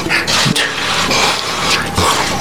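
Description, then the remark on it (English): Repeated nasal sniffling by a man, from May 2018: a series of short, breathy hissing sniffs at irregular intervals, fairly loud, with no talking over them. “So here's his May 2018 Adderall sniffles.”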